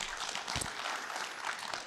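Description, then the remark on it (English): An audience breaks into a round of applause for a newly launched app, a dense, steady wash of many hands clapping at once, holding a fairly even loudness throughout the short burst. “So you can give that a round of applause, because we've been working on that for 5 months.”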